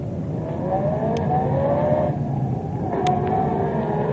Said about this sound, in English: That car that just passed us. It's disappeared. Maybe it turned, bend in road. But the road is as straight as a die.